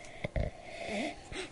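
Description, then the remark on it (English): A few quick, breathy sniffs at the aroma of a brown-coloured beer, through a stuffed-up nose, two in rapid succession and then one more after a pause, soft and slightly wheezy, with a faint whistling tone between them. “And see, if maybe the next sniff will be something different.”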